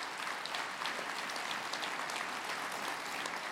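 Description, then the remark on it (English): Sustained applause from a large audience, a dense steady wash of clapping hands at even loudness throughout, with no voices standing out above it, giving Jesus a round of applause during a sermon. “Come on, if we're going to give Jesus a round of applause, let's give it together.”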